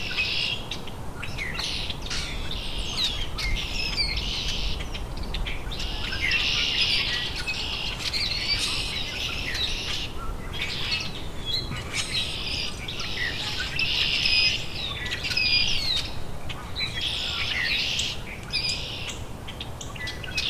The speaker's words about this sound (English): Rusty blackbird singing from exactly where he landed before, just in some dogwood.